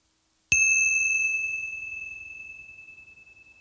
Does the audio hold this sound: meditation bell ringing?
yes